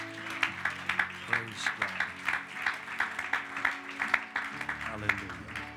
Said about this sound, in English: I think we ought to one more time give a round of applause of appreciation to our men.